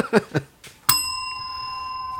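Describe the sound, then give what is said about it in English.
A single bright bell strike rings out loud, its clear metallic tone sustaining steadily to the end, after a few short muffled sounds. “There's no bell for the end of the game. I just felt like punctuating that note.”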